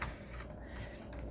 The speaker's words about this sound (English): All right, cut that off. And we'll go around the world here. Going around the world, cutting off the paper.